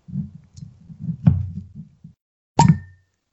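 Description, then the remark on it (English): Low creaking and squeaking as a squeaky corkscrew (wine key) works into a non-carbonated wine bottle, then a short silence and a single sharp cork pop. “You usually get pretty decent red wine pops.”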